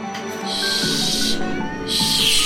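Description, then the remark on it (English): A kitten in a room hisses twice, each a sharp, breathy burst lasting about a second, with a brief pause between. No one is speaking. “There is a kitten in my room.”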